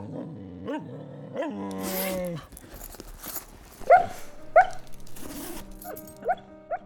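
A dog growls and whines in a long, wavering stretch, then gives several short, sharp barks spaced a second or so apart, clear.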